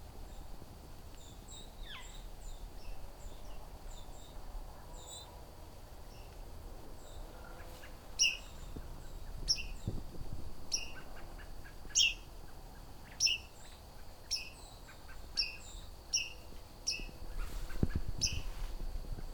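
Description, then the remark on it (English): A white-throated sparrow gives sharp, high call notes, repeated at irregular intervals over about ten seconds, with softer chirps from other birds and a low outdoor hum in the background. “It's a white-throated sparrow.”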